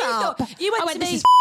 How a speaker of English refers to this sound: Did I just say his name? Have we said his name? No, we haven't. I'll beep it out. I'll have to beep it out.